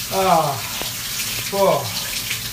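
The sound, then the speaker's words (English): Cold shower water runs in a steady, broad hiss throughout, while a voice lets out two drawn-out, falling groans or gasps over the spray. “Cold Shower Challenge”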